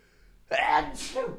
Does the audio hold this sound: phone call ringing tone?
no